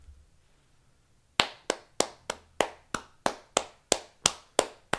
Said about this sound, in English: You fucking making it clap like that. And they must have perfect ass if they're clapping like that. That sounded too... Hold on. Now you want to stop. Clap those fucking cheeks. Yeah, go ahead and clap those cheeks.